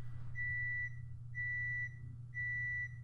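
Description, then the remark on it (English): An oven alarm beeps three times in a steady rhythm, each beep a long, high, pure electronic tone about half a second long, heard over a constant low hum with no one speaking. “I mean, it's gotta be a microwave, right? It's the oven.”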